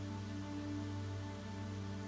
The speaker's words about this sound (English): Let's take a couple of minutes while the rain's falling.